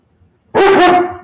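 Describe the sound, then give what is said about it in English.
After a brief silence, a dog lets out one loud, drawn-out bark with a tonal, slightly whining quality that trails off at the end. “No, you just want somebody to play with you, even though we just came back from the park.”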